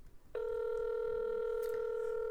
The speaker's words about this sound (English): Oh. Ringing. It's ringing.